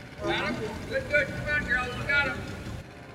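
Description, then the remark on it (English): A tour operator's motorboat engine rumbles and whines, its pitch rising and falling as it speeds forward and then backwards into the shore to keep a manatee trapped, with muffled voices mixed in over the steady drone. “He speeds forward and then backwards into the shore to keep the manatee trapped.”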